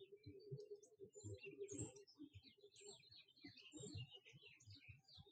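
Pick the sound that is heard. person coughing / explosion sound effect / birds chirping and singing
birds chirping and singing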